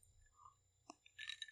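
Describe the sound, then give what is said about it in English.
Ice clinks against a glass: a single sharp tap, then a quick cluster of bright, high-pitched ringing clinks, fairly faint over a low background hum with no talking. “Man, that's clanky ice.”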